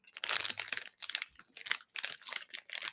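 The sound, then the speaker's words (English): The plastic wrapper of a Russian waffle snack with condensed milk filling crinkles and rustles as it's pulled open, in a series of sharp, bright bursts of crackling with short pauses between them, no voices. “I'm going to open that one because I'm already chewing.”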